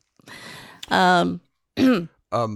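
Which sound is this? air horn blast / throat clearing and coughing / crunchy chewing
throat clearing and coughing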